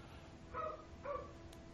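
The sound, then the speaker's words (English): A dog barks twice in quick succession, two short, fairly soft barks about half a second apart over a low, steady background hum. “Shut the fucking dog up.”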